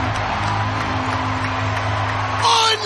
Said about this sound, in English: He will fall away from the baseline and miss it! Pelicans win! Crowd erupts!